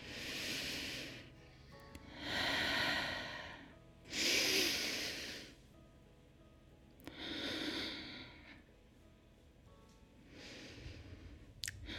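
A person takes a series of slow, deep breaths in, each airy inhale swelling and fading in a steady rhythm, with quiet pauses between and no talking.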